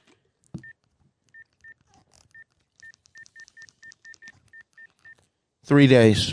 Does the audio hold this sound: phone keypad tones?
yes